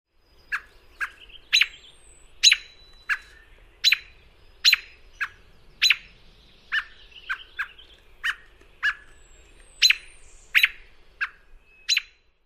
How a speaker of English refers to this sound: A sharp yeep or peek as an alarm call.